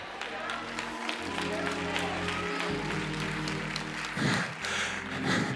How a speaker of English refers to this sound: That was a cute clap, but I came to tell you anyway.